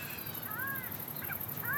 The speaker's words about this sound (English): There's some crows in the distance.